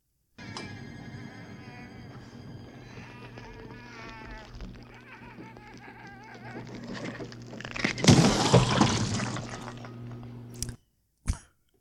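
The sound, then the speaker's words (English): High, warbling creature squeals and chirps over a steady electrical hum as a small creature is heated in a microwave oven, rising in intensity until a loud, messy burst as it explodes, followed by sudden silence and a couple of brief clicks. “That is the sound of a gremlin being microwaved to explosion.”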